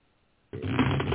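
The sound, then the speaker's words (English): Steady riffling of tarot cards being shuffled, a dense papery flutter that starts abruptly after a short silence and continues to the end, with no voices. “Doing a little shuffling.”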